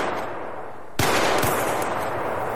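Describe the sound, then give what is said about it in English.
Two loud, sharp gunshots ring out in the dark after the power suddenly goes out, about half a second apart, each leaving a lingering echo, with a low background hiss beforehand and no voices. “In the dark, two gunshots are heard.”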